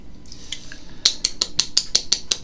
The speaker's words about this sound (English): That's happening as me hitting the top of the beer can, guys.